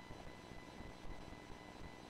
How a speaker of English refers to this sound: Oh, sounds like a fan, not a beep. Okay. There's a... Okay. Duh, duh, duh. There's a beeping and white noise. The beeping is very faint. Okay, the beeping is faint. The fan's on. That's why.